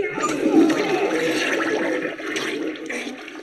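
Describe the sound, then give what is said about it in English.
A toilet flushes, a loud continuous rush of water swirling down the bowl for several seconds, no voices. “How about a courtesy flush over there?”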